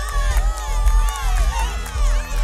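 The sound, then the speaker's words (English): A large crowd cheers and applauds loudly and continuously, many voices whooping and shouting over a dense wash of clapping, full throughout. “You see, there are so many unsung heroes out there who never get the credit, and I think first off, a round of applause for the postmen and women who don't get much of a mention.”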